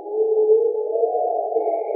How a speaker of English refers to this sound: I was very tired, and I had my headphones on and my microphone outside the tent because I was recording the nighttime sounds. I heard the hyenas yowling.